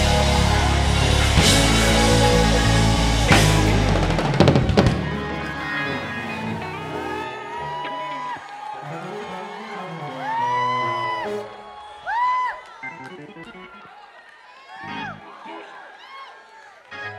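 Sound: audience screaming and cheering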